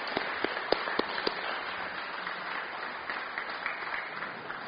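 An audience applauds in a dense, steady wash of clapping, with a few sharp individual claps standing out at the start before the sound settles into an even, moderate roar.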